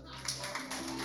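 A group applauds in a steady, dense patter of clapping for about a second, fairly loud throughout, with no single claps standing out and a faint low hum underneath.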